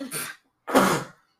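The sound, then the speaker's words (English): A sneeze: a short breathy intake, a brief pause, then a loud, forceful burst that dies away quickly. No one is talking. “Bless you.”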